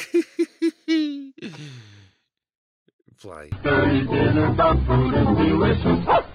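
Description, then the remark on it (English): A dog gives four quick barks in a row, then a drawn-out falling whine; after a short pause, loud, dense sound takes over. “Oh, and then a dog did a bark.”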